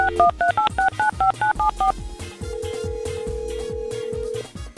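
A quick run of about eight telephone keypad dialing tones, crisp two-note beeps in steady rhythm, followed by a long steady tone over a busy, noisy background, as a phone call is placed.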